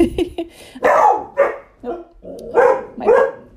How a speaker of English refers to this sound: My puppies are in the room, so if they're... Hold on a second.